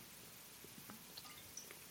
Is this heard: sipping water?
yes